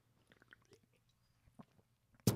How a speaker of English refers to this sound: Taking a sip of some yerba mate. It really is good.